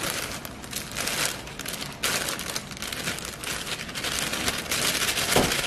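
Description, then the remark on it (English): A steady rushing hiss of dry cake mix pouring into a bowl, with soft crinkling from the bag, lasting several seconds with a few brief surges. No one speaks. “So the first ingredient is the cake mix. I'm just gonna pour all of that in.”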